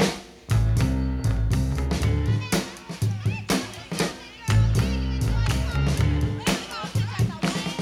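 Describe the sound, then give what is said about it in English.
A party crowd murmurs and chatters in the background of a dance party song's intro, with a punchy bass guitar riff doubled by piano and sharp drum hits driving steadily throughout. “You can tell the party's already started with the crowd noise in the background.”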